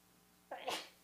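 sneeze

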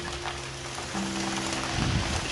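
rain falling

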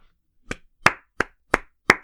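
applause sound effect

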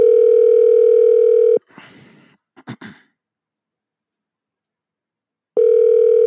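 outgoing phone call ringing

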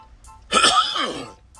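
throat clearing

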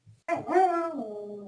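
dog barking

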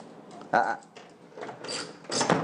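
door being opened

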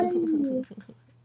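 pet cat vocalizing

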